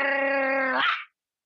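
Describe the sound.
A person's voice imitates a tiny dog biting a shoe: one steady, nasal growling tone held for about a second, breaking upward at the end before cutting to silence.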